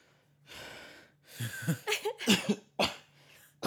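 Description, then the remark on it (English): A voice imitates a string of coughs, like someone coughing in a silent classroom during a test: a breathy wheezing lead-in, then several sharp hacking bursts in irregular rhythm, fairly loud against a quiet background. “I'm the type of person that's always sneezing and coughing and I don't want people to get the wrong idea.”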